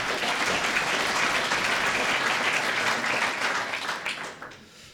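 A crowd applauds steadily, a dense wash of many hands clapping at full volume for about four seconds before it fades out quickly near the end.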